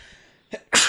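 A sharp sneeze: a brief intake followed by a loud, explosive burst that ends abruptly, with no one talking.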